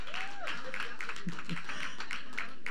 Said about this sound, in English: They clapping and screaming over the word.